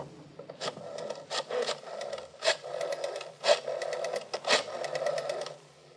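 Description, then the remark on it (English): A telephone being dialed: a run of mechanical clicking and whirring in several short bursts with brief pauses between them, fairly quiet, with no voices. “Okay, if I use your phone for a minute?”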